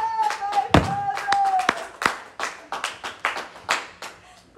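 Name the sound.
audience clapping hands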